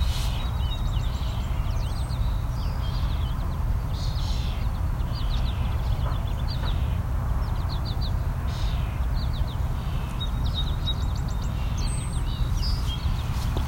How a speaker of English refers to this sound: So this orchard oriole is being drowned out by the other birds singing.